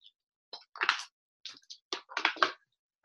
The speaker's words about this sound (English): I know you hear my water bottle. That's better than hearing me cough.